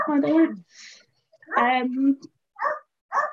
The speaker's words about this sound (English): Can you hear my dog barking? I can. Is he missing you?